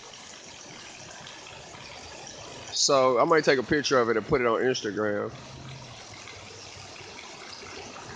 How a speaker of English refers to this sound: I know y'all hear that water pouring down, and I mean, it's very motivating, you know, to see all this water, see the holes in the roof, water just pouring through. Big hole in the roof.